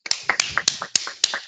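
Scattered applause from a small audience welcoming an evening's guest involved with the SC Heerenveen volunteer association: a dozen or so sharp, irregular handclaps over a second and a half, thin rather than a full ovation, with no talking.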